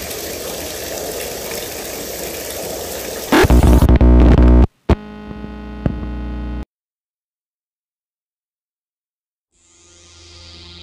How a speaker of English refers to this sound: You might want to cover up, me, because that ceiling panel above our equipment is about to cave from water damage. Thank you for the info, me. I'll take... Whoa!